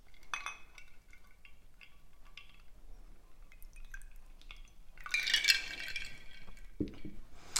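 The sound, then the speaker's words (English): A cocktail is strained from a shaker into a coupe glass in a kitchen: soft clinks and rattling ice at first, then a brief splashing pour of liquid, fairly quiet, with no one speaking. “You're going to strain that into a coupe glass.”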